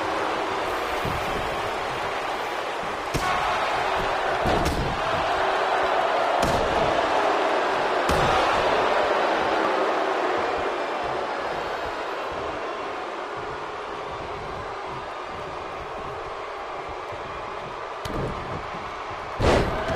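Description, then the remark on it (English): Several sharp, heavy thuds of a wrestler slammed onto a ring mat with a DDT, spaced irregularly over a constant roar of crowd noise, with a final impact near the end, during a wrestling match on Superstars. “Goes for the pin after that DDT and only one count.”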